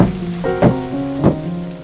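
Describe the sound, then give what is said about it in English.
A stormy soundscape of steady rain with a couple of short, swelling rumbles, set against a low sustained musical drone. Nobody speaks. “As the storm subsided, the father ventured forth to reunite with his daughters”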